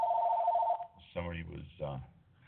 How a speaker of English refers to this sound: There's another phone call. Jeez. It's been a busy night.